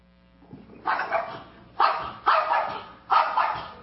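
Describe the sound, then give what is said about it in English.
A dog barks four times in short, sharp bursts at uneven intervals, fairly loud, at a cat trying to come up the stairs, with no one speaking. “I don't want to mess with that dog, is what the dog's thinking.”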